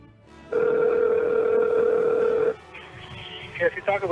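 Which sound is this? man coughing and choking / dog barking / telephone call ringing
telephone call ringing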